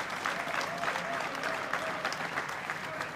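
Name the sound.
audience applauding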